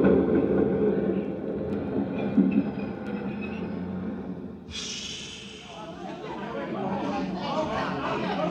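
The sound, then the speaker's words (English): Ambience of the subway station at 59th Street: a steady low train rumble with indistinct crowd chatter, broken midway by a sharp hiss of brakes or doors before the murmur and clatter continue. “Joe Kendall worked in the change booth in the subway station at 59th Street.”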